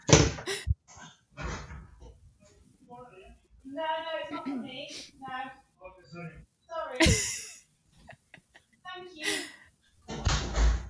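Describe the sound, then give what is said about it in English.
A front door opens and shuts for a Just Eat delivery man, with a few sharp clunks and thuds spread out among intermittent speech, and a final solid bang near the end. “I was going to say, is that the door? Yeah, can I go get it?”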